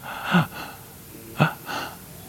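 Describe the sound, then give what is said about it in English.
A voice imitates a church gasping for breath: two sharp, strained inhalations about a second apart, each followed by a softer breathy exhale, fairly loud with no words spoken. “And the church is going like this. It's breathing.”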